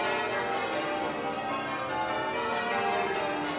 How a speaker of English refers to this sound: And it's difficult to see where this music or this sound is going and whether, in fact, it is music at all. And there are points in the ringing where it sounds like the bells are sort of about to return to a kind of order.